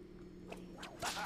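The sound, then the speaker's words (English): A video game whip crack: two quick swishing lashes followed by a louder, sharp snap with a brief bright tail, all over a low, steady electronic hum, as the whip strikes a spike trap and sets it off. “Okay, if I hit it with my whip, it sets it off.”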